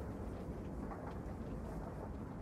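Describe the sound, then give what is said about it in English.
A steady, dense low rumble of a train rolling along the rails, heard from on board, continuous and even throughout, with no voices. “Well, I'm on this train.”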